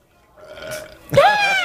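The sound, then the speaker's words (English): A loud, drawn-out burp sound effect played from a soundboard button plays on its own, starting with a low rumble and swelling into a throaty, rising belch that holds to the end. “I totally just hit probably the burp button.”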